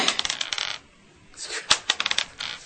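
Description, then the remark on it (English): Dice clatter and rattle across a hard table surface in two quick bursts of sharp clicking, separated by a brief pause, fairly loud with no voices. “Man, I should be rolling these”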